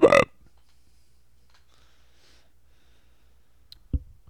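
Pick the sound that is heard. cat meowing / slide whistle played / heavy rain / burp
burp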